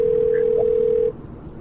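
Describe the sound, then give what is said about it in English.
A steady electronic telephone ringing tone holds for about a second, then cuts off, leaving quiet background hiss. It sounds like a call ringing on the other end. “pick up the phone.”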